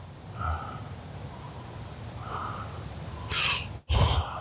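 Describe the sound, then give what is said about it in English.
A dog breathes heavily with raspy huffs and a couple of snorting bursts near the end, steady low rumbling throughout, no talking. “You just listen to him breathe.”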